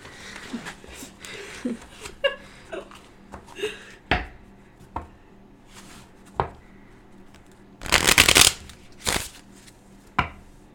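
A deck of playing cards being shuffled between rounds of a card game: scattered crisp snaps and taps, then a dense riffling burst lasting under a second, followed by a few sharp card knocks.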